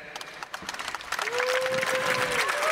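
A crowd applauds to vote for an option, where the loudest clap wins: steady scattered clapping that swells louder partway through and holds, with cheers and whoops rising over it.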